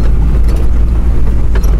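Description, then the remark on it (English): Loud, steady low rumble of a vehicle cabin with the windows rolled up, driving behind a big bus on a very raw, rugged and dusty road, with constant droning engine and road noise and faint intermittent rattles and bumps throughout. “I would say this is probably the most raw and rugged road I've traveled.”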